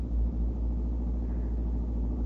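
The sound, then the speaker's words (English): A car drives steadily along a road, its low engine and tire rumble droning evenly and fairly loud throughout, as if heard from inside the vehicle, with no one speaking. “Park the car beside the road for a minute, dear.”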